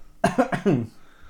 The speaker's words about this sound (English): I wasn't coughing because of Coventry Hospital. I literally had something in my throat.